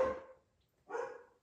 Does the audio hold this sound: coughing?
no